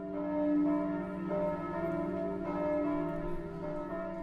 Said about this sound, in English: And we hear the bells ringing at one point, and so it seems like there is no hope and that there may not be any people left.